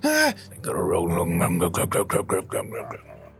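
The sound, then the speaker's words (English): A voice imitates a guttural snore: a brief, tonal groan followed by a run of rough, rhythmic vocal rasps, fairly loud. “That's me snoring.”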